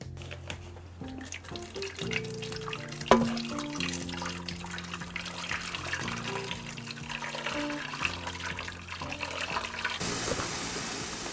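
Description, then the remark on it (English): Slightly spicy hot soup pours steadily into a hot pot on the stove, a continuous splashing, gurgling stream that runs the whole length without pause, with a soft musical tone underneath. “After that, it's just a matter of frying up the stove, pouring slightly spicy hot soup in, and waiting for it to boil.”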